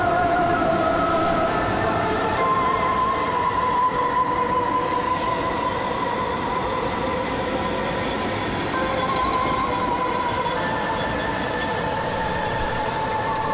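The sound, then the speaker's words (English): A steady, loud mechanical clatter of jackhammer construction runs throughout, while long sustained melodic tones of a city's call to prayer rise and fall above it, recorded out a window on an iPhone. No one talks. “You can hear construction going on. Yeah, like someone's got like a sledgehammer or something going on there, or jackhammer.”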